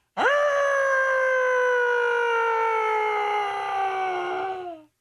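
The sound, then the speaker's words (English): A single loud voice imitates an old-school air-raid siren, a sustained wailing tone that swoops up fast, holds for several seconds, then sags downward as it fades out, with no other sounds. “And here's a better siren, by the way.”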